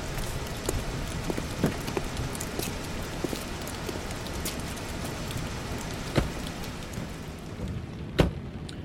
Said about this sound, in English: Son, what the hell are you doing out here in a storm like this?